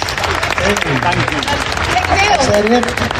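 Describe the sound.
An audience at a Comic Con panel breaks into a steady round of applause, a dense wash of clapping that stays loud throughout, with voices and a few cheers rising over it.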